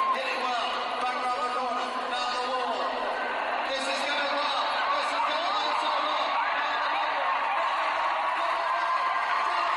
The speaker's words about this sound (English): So I'm sorry that you can't see this, but hopefully you'll pick up some of the hype and enthusiasm and excitement of the crowd.